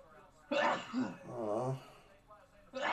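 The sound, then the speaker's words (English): A single abrupt sneeze bursts out, followed by a voiced, drawn-out exhale, and another sharp onset at the very end, with no clear talk in between. “Bless you.”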